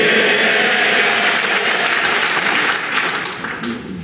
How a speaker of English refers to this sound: Your Excellency, we generally do not allow applause in this chamber. But on this occasion, the House quite rightly wants to demonstrate our respect and support for your country and its people in the most difficult of times.